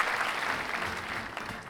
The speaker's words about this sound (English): I'll give this a pleasant applause. Well, good for you. I'm going to give this a pleasant applause as well.